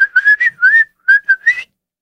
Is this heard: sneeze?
no